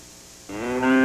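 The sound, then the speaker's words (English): A single loud cow moo rises in pitch and holds steady after a moment of near silence. No one speaks. “The other day, I was talking to a cow while eating a creamy Jell-O pudding pops.”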